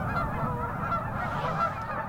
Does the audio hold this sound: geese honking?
yes